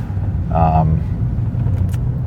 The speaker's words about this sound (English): Oh boy, did you hear that, guys? That was a little Acura, some little Rice Rocket type of car.